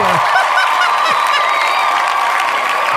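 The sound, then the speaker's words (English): A loud, shrill Woody Woodpecker cartoon laugh rattles on continuously for a few seconds, a dense, chattering cackle with warbling high tones and no pauses or talking. “Woody Woodpecker was one of my favorite cartoons when I was little.”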